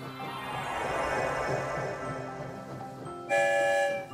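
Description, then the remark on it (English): A train coming out of a tunnel rumbles along steadily with a droning, rattling roar, then a loud, bright whistle blasts near the end before cutting off. No one speaks. “I wonder where the story train will lead us this time. Here comes the end of the tunnel.”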